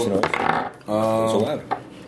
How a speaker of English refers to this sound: So we will use, of course, these official dice. Yay, thuds. Yes, thuds.